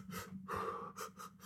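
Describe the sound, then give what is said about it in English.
A voice imitates the rapid panting of women in labour doing breathing exercises in a stage show: a quick run of short, breathy huffs with one longer exhale in the middle, fairly loud, with no talking. “You know, and they do their little breathing exercises.”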